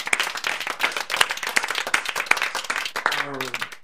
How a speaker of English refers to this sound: So first and foremost, I want to say, give yourselves a round of applause and thank you for what you have done.